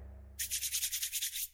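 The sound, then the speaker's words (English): A hand rubs back and forth across a smooth gray stone desk, making a soft, breathy swishing in about eight quick, even strokes over a low steady hum. No one speaks. “Go ahead. Run your hand on the desk.”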